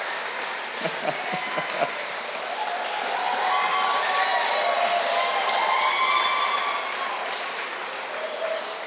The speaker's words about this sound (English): Give her a big, she's got a long way to walk, so y'all have to clap for a long time.